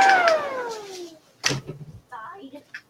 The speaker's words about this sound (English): What was that? Oh, I'm sorry. That was my ventilator system kicking off.